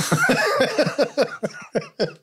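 A rapid fit of hard, harsh coughing, about eight or nine forceful bursts in a row, loud, with no talking.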